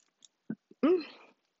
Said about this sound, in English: I'm so sorry, guys. It's the soup. The soup is really... I'm really full, and I was drinking so much water, so now I'm just burping, and I'm very sorry. Please excuse my bad manners. I cannot control it.